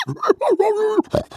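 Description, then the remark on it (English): Voice actor Jim Cummings imitates a pig for Hondo speaking Ugnaught, making a loud series of guttural grunts and snorts, with several short bursts around one longer, drawn-out grunt, and no ordinary talking. “I love the idea of just sweet Jim Cummings just like in there like making like Hondo pig noises is basically what he's doing.”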